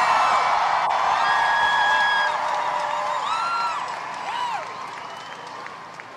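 A large crowd cheers and applauds in a dense, steady roar, with high whistles and rising whoops cutting through. The noise holds loud throughout, easing slightly toward the end.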